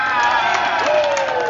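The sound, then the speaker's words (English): A crowd of children, just proclaimed crew members for Captain Jack Sparrow, cheering loudly together after three cheers of hip hip hooray, a dense, sustained burst of high-pitched shouts and whoops, with one rising yell standing out near the end. “Big cheer!”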